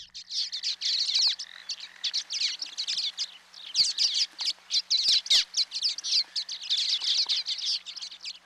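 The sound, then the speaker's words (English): A busy stream of high, thin chirps and twittering calls from common waxbills, tiny finches with red eye masks, in the lowlands of Hawaii, repeated rapidly and continuously, clear, with no talking. “this week, University of Hawaii at Hilo professor Patrick Hart introduces us to the tiny waxbill”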